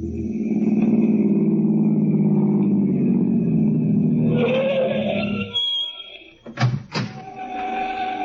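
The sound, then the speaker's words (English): A car engine rumbles steadily, then revs higher before dropping away, followed by a couple of sharp knocking thumps and a lower idle. “Let's go for a drive.”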